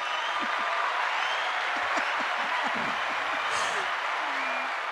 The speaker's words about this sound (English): So I know you all got a shout out a couple weeks ago, yes, but I'm going to give you one here face to face, because you guys all really do deserve a round of applause.